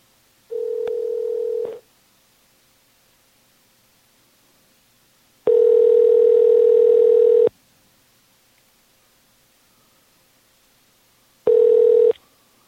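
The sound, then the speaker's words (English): A phone line rings out with a steady electronic ringback tone as a prank phone call is placed, three loud bursts separated by pauses of silence, with no voices. “This is live prank phone calling.”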